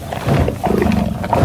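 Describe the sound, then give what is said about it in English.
A buffalo moos in a deep, drawn-out bellow as it pulls with all its might to drag a minibus out of a ditch, loud and steady for about a second and a half, with a rough, rumbling low tone and no talking. “And Buffalo mooed and pulled with all his might.”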